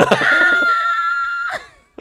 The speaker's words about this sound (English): I screamed away from the mic.